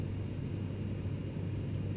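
A steady, droning engine roar like a jet in flight, with a deep constant hum and no change in loudness across the short stretch. No one speaks.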